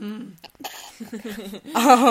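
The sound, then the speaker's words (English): A person mimics coughing and gagging: a few short, strained vocal bursts and choking sounds that build to a louder, drawn-out retching groan at the end. “My immediate thought was, like, throwing up, because it wasn't just coughing, it was like I'm not gonna actually do like gagging. Gagging, coughing.”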